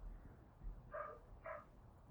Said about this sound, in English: Barking dogs.